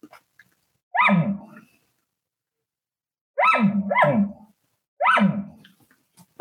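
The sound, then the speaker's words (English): A voice imitates an elk's nervous bark: short, loud, harsh barks, one alone, then a quick double, then another single, spaced by pauses of silence. “So, okay, let's talk about that nervous bark real quick.”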